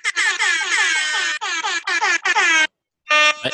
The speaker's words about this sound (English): Michael, double air horns.